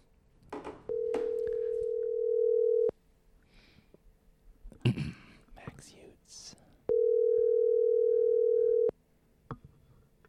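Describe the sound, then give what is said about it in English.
A call placed to a person's cell phone rings out with two long, steady ringback tones, each about two seconds and separated by a few seconds of muffled voice and handling noise, with brief clicks near the start. “So let's call him up, see what he says.”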